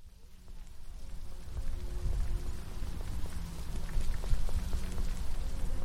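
nature, light rain drizzle

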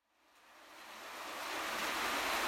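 nature, heavy rain coming down

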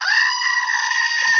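animal, goat bleating

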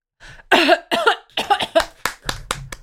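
human body sound, cough

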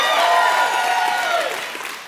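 crowd, audience clapping and cheering

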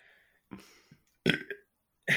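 human body sound, burp

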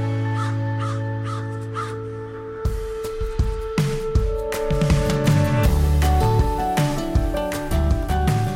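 bird, crows cawing

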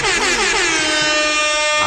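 signal or alarm, air horn blast

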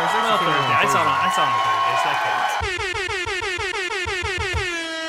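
sound effect, air horn blasts

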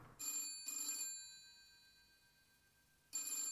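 signal or alarm, telephone bell ringing

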